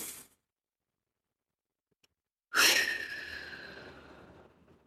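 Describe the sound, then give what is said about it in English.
A person takes a deep, slow breath in and then breathes out swiftly: a single loud, breathy rush of air bursts in after near silence and trails off gradually over a couple of seconds, alone with no talking. “Suck in a deep, slow lungful of oxygen and breathe out swiftly.”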